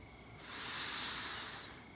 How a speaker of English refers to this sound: and out. I want you nice and relaxed. Another deep breath in and out.